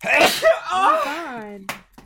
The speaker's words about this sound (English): Oh god, I sneezed so hard I dropped my phone. Oh my god. Extreme sneezing. It's the new hit sport.